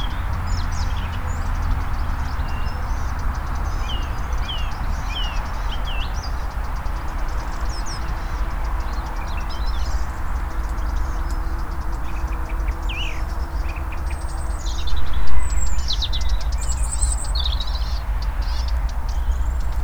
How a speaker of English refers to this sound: An odd mixture of a song thrush, robins, and the noisy traffic on the A35.